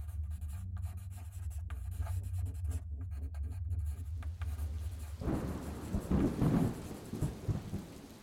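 A pen nib scratches across a blank page in quick, uneven strokes over a low, steady rumble of a storm; after a few seconds, a louder roll of thunder with rain swells up.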